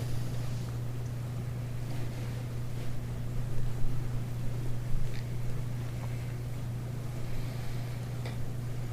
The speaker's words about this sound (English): It's nice to hear the sound of the rain. This is the body of spring.